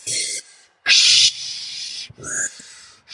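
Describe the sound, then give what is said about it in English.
Quick, tense breaths of an anxious person doing a breathing exercise, in close succession, sharp hissing inhales and exhales with short gaps between them, loud, with no talking. “And I remember distinctly being so just high strung that I was breathing, trying to do my exercise, and it was something like this.”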